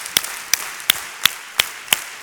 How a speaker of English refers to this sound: Okay, do me a favor. Take out your hands and clap 10 times. You ready? Here we go. One, two.